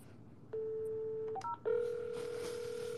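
A telephone is dialed to order more water: a steady tone holds for about a second, a few quick keypad beeps follow, then a lower, louder steady tone sounds without any talking.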